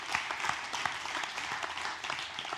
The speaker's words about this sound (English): Come on, let's cheer for that, right? Yep.